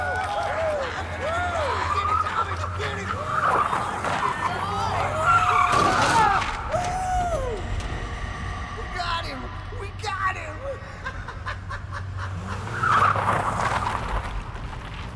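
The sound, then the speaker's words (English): A car with its headlights off rushes in at night with tires screeching and skidding in long wavering squeals, loud, a rumbling engine beneath, with a second burst of squealing near the end. “One night, he left the bar. There was a car with its headlights off.”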